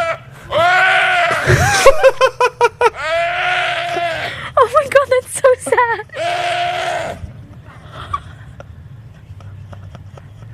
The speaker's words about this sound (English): So this is a deer getting attacked by a bear, right? Oh no. Tell me it doesn't sound like a drunk guy.